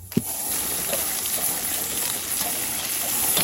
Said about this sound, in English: For that one, I feel hungry because I'm listening to bacon. I was definitely hearing and smelling onions, garlic, olive oil.